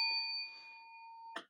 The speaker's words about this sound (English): Come on. Hit the bell. Hold on. I just did it.